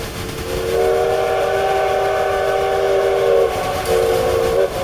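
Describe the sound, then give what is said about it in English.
A steam train whistle blows loud, one long sustained chord-like blast followed by a brief pause and a second shorter blast, with a low rumble of the train underneath. “Go make sure that Leonard is ready to run the brakes. Just blow the whistle.”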